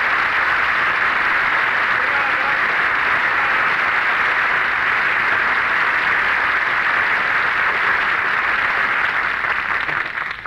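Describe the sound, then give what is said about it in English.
Everybody in a restaurant breaks into loud, sustained applause on hearing the name Douglas Fairbanks, Jr., a dense wash of clapping hands that holds steady for about ten seconds before easing slightly at the end. “You say, well, if it isn't Douglas Fairbanks, Jr., and everybody in the restaurant applauds.”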